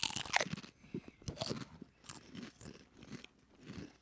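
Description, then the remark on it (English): A sharp crunch as a thick, deep-ridged rippled sour cream and onion potato chip is bitten, followed by several rapid, crackly chewing crunches that taper into softer munching, with no talking. “I really don't feel like this tastes like a sour cream and onion chip.”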